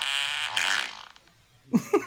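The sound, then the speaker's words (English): A long, buzzy fart sound played by a Google smart speaker in the kitchen rasps for about a second and trails off, followed after a short pause by a couple of brief voiced bursts, slightly distant. “Hey, Google, what's farts noise? This is a fart.”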